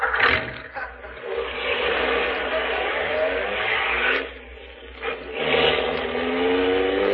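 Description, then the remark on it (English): A car engine roars and accelerates steadily during a chase, its pitch climbing in a couple of surges, loud, with rushing road noise throughout and a brief dip midway. “There they are. Right up ahead. Get closer.”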